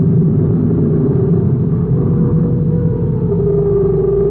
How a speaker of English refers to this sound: Captain Tkoja sets a big interstellar ship down on the surface of Jupiter's fourth moon.